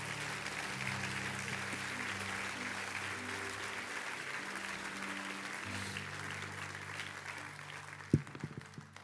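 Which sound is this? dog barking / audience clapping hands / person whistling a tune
audience clapping hands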